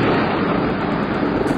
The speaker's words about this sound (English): Okay, gentlemen. If you're aware, when there's lightning, there is thunder.